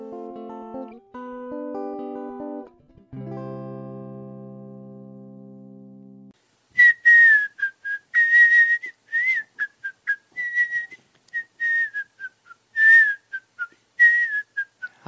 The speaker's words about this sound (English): I didn't really realize you whistled. And oh. It's a happy whistle. You must be happy.